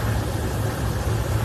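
A steady, low engine drone hums without a break, a broad rumbling roar that fits an airplane passing overhead, with no voices over it.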